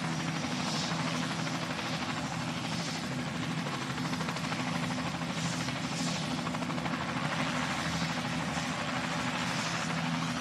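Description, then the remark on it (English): A twin-rotor helicopter drones steadily, its loud low rumble carrying a rhythmic rotor thump throughout, with no voices heard. “Two rotors, and it's going to have that thump, thump, thump.”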